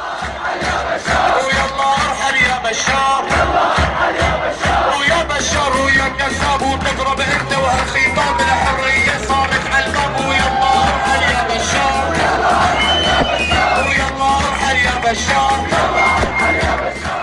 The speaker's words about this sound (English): In response, … led a crowd in a chant against the dictator in the streets of Hama. Here's a clip of that momentous occasion.